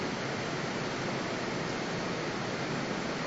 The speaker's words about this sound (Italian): Anche qui in Galati capitolo 3, mi potete capire con questa pioggia?